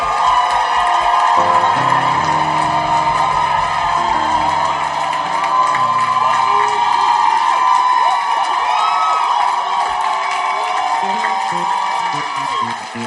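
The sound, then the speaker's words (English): A large crowd claps and cheers continuously during a service, with whoops and shouts rising over dense applause for people going back to their seats; low organ or keyboard tones sound underneath for the first few seconds. “Clap for them as they go back. Rejoice like heaven is rejoicing.”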